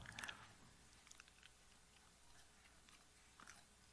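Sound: chewing gum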